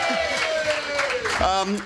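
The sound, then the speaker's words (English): A live audience in the room at a radio show recording cheers and whoops together, a dense, continuous wash of many voices with a few higher shouts rising above it, loud and unbroken for about two seconds. “That's real live people with pulses in the room who are about to cheer.”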